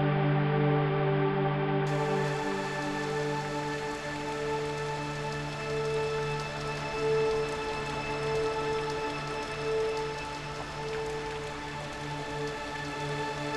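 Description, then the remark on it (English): Steady rain patters on a hard surface, a continuous hiss that never lets up, layered with sustained humming musical tones throughout. No one speaks. “The rain.”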